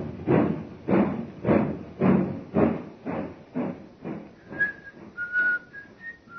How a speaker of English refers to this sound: The train is already disappearing from the track.